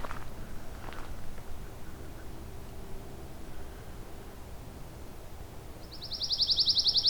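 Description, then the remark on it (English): A pine warbler's rapid, even trill bursts in near the end from directly overhead, fairly loud, over a steady bed of outdoor rustling and faint background noise. “Let's get a pine warbler right above me now.”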